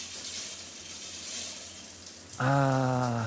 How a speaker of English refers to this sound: A warm, relaxing, soothing shower. Just surrender to it. It washes away the grime of the day. It washes away the sins of the past.